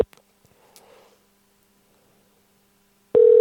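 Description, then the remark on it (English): A loud, steady ringing tone of an outgoing phone call cuts in abruptly near the end after mostly quiet, with only faint murmuring and small clicks before it. “Uh-oh, it's ringing.”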